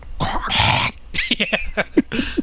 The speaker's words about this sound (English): She's like, hey, hear the dog.